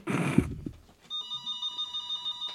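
household object, telephone bell ringing

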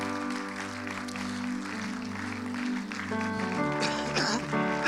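crowd, audience clapping

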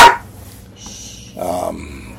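animal, dog barking

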